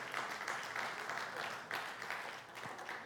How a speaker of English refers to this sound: Y'all better be clapping for the Spirit. That better not be an applause for me.